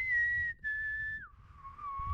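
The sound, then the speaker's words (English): A short low-high-low whistled tune, clear: a steady note, a brief break, then a slightly lower held tone that glides down and settles. No one speaks. “my brain just immediately went to the Hunger Games when they do the whistle”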